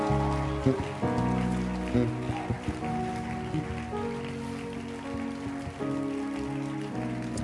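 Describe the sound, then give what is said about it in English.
A crowd in a church claps continuously, a dense, steady patter of many hands, over sustained musical tones that hold and shift underneath throughout. “clap your hands again.”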